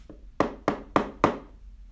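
Four firm knocks on a door in a steady, evenly spaced rhythm, each a sharp thud with a quick decay, fairly loud against a quiet background.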